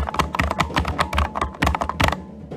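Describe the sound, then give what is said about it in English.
Rapid keyboard typing, a quick run of sharp clicks and taps in an uneven rhythm as someone hurriedly types in the password for the remaining doors, with no voices over it. “Types in the password for the rest of the doors.”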